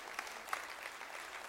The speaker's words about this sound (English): Yeah, you could clap. That's allowed.